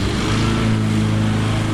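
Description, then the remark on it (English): A lawn mower's small gasoline engine drones steadily at a low pitch, with a constant buzzing hum and harmonic tones that shift slightly midway. “If you have a lawn, advocates are asking that you stop mowing it for the month of May.”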